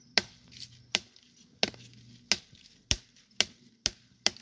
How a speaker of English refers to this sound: I keep damaging these trees by knocking on them.